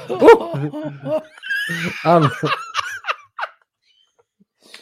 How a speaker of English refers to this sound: my bird's yelling in the background.